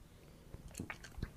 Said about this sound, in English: Here, take a sip out of this glass. When I poured our beers, I actually did... I poured it in four different segments.